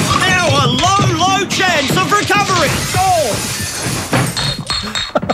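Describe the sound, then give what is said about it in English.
A loud crash into a glass door, with shattering and tinkling debris trailing off, mixed with strained, wailing vocal cries throughout. “Watch out for that glass door.”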